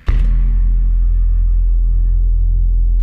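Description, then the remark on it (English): A red Mazda car engine roars to life with a sudden burst, then settles into a loud, steady low rumble that holds continuous for a few seconds, with no voices. “I think that red car must have been a Mazda. Zoom, zoom, zoom.”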